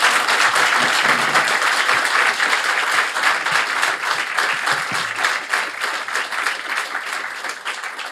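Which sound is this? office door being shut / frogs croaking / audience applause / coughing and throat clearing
audience applause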